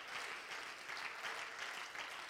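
Men in a crowd applaud Jesus, producing a dense, even wash of clapping with no distinct individual claps and no voices, holding at a constant, moderate loudness throughout.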